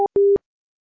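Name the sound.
telephone busy tone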